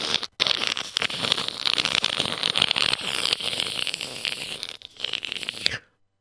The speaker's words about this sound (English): And, of course, the chief of police, through all of those signed affidavits, all of those testimonies from all the people in the town of Must, he threw it into the fire, and it started burning. You heard the crinkling and crackling.